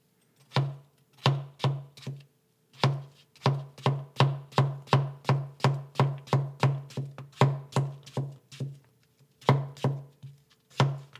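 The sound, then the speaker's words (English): A knife dicing a halved English cucumber, seeds and all, on a cutting board: a steady run of crisp chops, each with a dull thud, coming in quick bursts with brief pauses between them and no talking. “Next up, an English cucumber that I'm just going to slice thinly. Actually, I changed my mind. I'm gonna half it and then dice it.”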